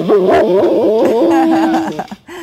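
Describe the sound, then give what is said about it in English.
A dog barks and yowls along with a song, its wavering, drawn-out cries loud, tangled with the singing melody for a couple of seconds before dropping off. “Her dog knows. Love it. Dog's loving it.”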